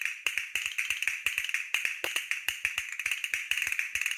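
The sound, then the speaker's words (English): Castanets clicking in quick, crisp bursts, with sharp bright clacks tumbling in an uneven rolling rhythm throughout. The rattle stays steady and fairly loud, with no voices. “Castanets.”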